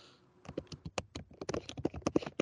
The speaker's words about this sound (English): It was just that it was really loud, but that, I swear that wasn't the typing. That was like furious typing too.